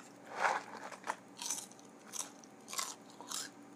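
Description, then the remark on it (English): Crisp crunching as someone bites into crunchy Cracker Jack popcorn, with about six sharp, crackly bites spaced unevenly over a few seconds and quiet pauses between them. “Crackety Jack, don't crunch back.”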